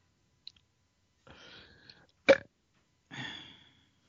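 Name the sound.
burp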